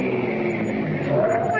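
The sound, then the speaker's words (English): A car with its headlights on, driving fast in the rain, its engine roaring steadily and growing slightly louder as it draws near, a continuous rushing drone with a faint rising whine toward the end. “Hey, look, someone's coming. Yeah, with his headlights on. He's coming fast.”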